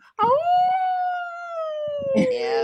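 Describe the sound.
A person lets out one long, loud wolf-like howl, a sustained wavering tone that slowly glides downward over a couple of seconds, with a brief rough vocal burst near the end.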